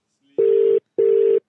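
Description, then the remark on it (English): Two ringback tones of an outgoing phone call, each a steady mid-pitched electronic buzz about half a second long, separated by a short pause, with no talking. “He's asleep. Hope he doesn't screen us.”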